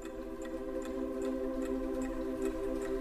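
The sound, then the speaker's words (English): A clock ticks in a steady, even rhythm, each soft click spaced about half a second apart, over a constant low tonal hum. No one speaks. “For me, the clock is a different experience than it will be for you or for people who are seeing it for the first time.”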